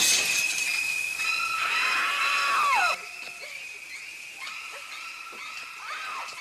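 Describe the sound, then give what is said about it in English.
Shrill, screeching horror-movie stabs, the famous shower-scene sound effect from the film Psycho: piercing high tones with sliding, swooping pitches, loud for about three seconds, then quieter repeated screeches. No talking. “That's from a movie called Psycho from, I think it's the 60s or the 70s, and it's a shower scene where some chick gets fucking slashed in the shower while she's naked.”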